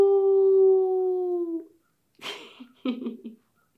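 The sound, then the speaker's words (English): A person imitates a dog's howl with a long, steady, sustained tone that slowly falls away, followed by a brief pause and a couple of short breathy, noisy vocal sounds. “The doggie gave the mitten a sniff. And then he let out a howl.”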